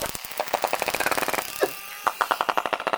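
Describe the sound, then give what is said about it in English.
Rapid trains of sharp echolocation clicks from a bottlenose dolphin pod in Milford Sound, New Zealand, used to find prey and communicate. They rattle along steadily and speed into buzzy bursts, with a brief rising squeak partway through and no voices. “They use a series of clicks for echolocation to find prey and communicate.”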